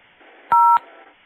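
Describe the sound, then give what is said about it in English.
A single telephone keypad tone sounds clearly for about a quarter second, a steady dual-pitched beep with small clicks at its start and end, over a faint low background hum. “Just a minute now. Let me press the button.”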